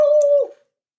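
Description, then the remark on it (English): A person imitates a cat with one short, clear meow that holds a steady pitch and then slides down and fades. It is fairly loud, with no other sounds around it. “Did you bring in cats?”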